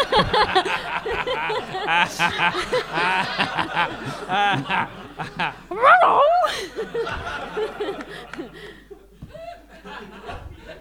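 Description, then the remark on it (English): A person voices a dog while working a Dachshund puppet with their hand, letting out yips and a few high, wavering whimpers, with audience members laughing over and around the noises throughout. “Well, you got a 19 on your performance check, so some of the audience actually turn and begin to watch you do the dog instead of...”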